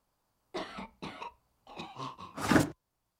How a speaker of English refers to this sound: Uh-oh, better call the nurse. And you just hear this hacking up of guts there.